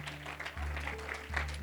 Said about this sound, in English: Let's give the Lord that hand clap of praise this morning.